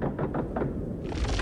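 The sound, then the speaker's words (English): Pod doors opening: a steady low mechanical rumble with a few soft rhythmic thumps, then a loud broad hiss of air bursts in after about a second and holds. “The doors are opening.”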